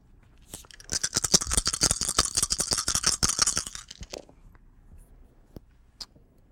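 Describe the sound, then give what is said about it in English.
A dice pool for a manipulation and craft roll rattles and clatters rapidly for about three and a half seconds in a dense, bright burst, then settles with a few scattered sharp clicks. No one speaks. “Would you like to spend willpower to reroll three of those dice?”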